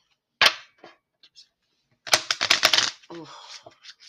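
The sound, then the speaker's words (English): Tarot cards being shuffled: one sharp snap, a few light taps, then a quick burst of rapid papery flutters for about a second, followed by a faint murmuring voice. “Y'all, those cards is really hard for me to shuffle just now, though.”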